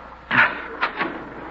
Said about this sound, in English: I think we made it. Open the door.